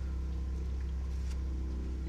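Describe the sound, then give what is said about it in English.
A power washer buzzes with a steady, low, droning hum that holds constant for the whole stretch, its motor tone layered with faint higher harmonics and no voices over it. “You know, you might hear buzzing, and that's a power washer.”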